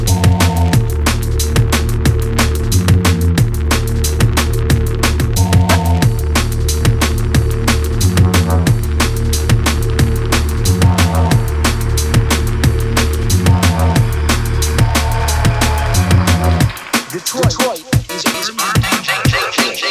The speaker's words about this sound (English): Absolutely wicked tune.